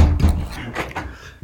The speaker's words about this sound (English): Just shut the fucking door then.